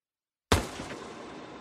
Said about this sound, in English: Single gunshot.